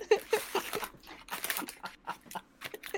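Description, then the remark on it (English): A dog barks in a rapid, irregular burst of short, sharp yaps, moderately loud, with no one talking over it. “Whoa! Woof.”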